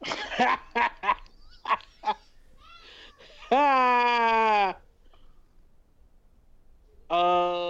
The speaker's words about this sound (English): All right, we got to get out of here because kids are screaming.